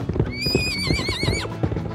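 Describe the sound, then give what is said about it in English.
A horse whinnies loudly, its high wavering neigh rising and falling over about a second, while hooves clip-clop steadily underneath and continue after the call fades: Deputy Sheriff Logue's horse, saddled in the courthouse yard and ridden off by Ben. “Ben saddled the horse and was off.”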